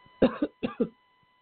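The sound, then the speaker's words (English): Four quick coughs in two pairs, loud and harsh, with a short pause between the pairs and no talking. “Sorry, coughing here.”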